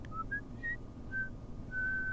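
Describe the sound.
Soft, breathy whistling plays a few short, thin tones in a wandering tune, ending on a longer held note, faint over a low rumbling background.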